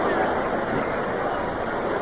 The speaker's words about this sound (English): 2-1 pitch is a curve over the outside for a call, second strike. Now you can get the suspense of the crowd. Here they are, roaring on each pitch.